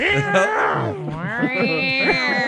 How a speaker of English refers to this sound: What it really is, the sound. Because this is really weird sound. It's two cats having sex.